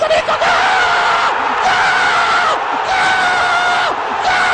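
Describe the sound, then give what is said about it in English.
A BART train screeches loudly along the tracks, a continuous shrill metallic squeal with wavering, sliding pitches over a roaring rumble, unbroken for several seconds. “Randall Chang told us he thinks that BART sounds like the goal scream in soccer matches.”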